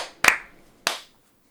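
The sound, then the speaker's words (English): Two sharp, crisp hand claps for audio sync, roughly half a second apart, each with a short ringing decay, followed by quiet. No one speaks. “All right, clap sync.”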